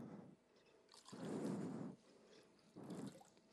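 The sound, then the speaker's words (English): Water is poured into an empty bottle in three short bursts, each a soft splashing gurgle separated by brief pauses, fairly quiet, with no one talking. “Where we properly recognize our standing before God is like this empty bottle. And we can now be filled with God's living water.”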